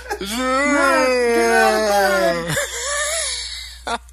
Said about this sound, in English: He's just yawning. Like, that's what I sound like when I get out of bed in the morning.